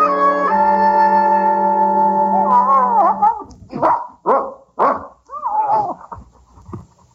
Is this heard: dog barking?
yes